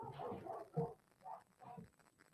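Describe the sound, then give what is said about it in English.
Several dogs barking at a man outside in uneven bursts, muffled, with four or five loud outbursts spread across a couple of seconds, as the dogs try to jump through a window. “And like, my dogs is like trying to jump through a window.”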